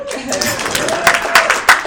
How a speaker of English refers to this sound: One clap.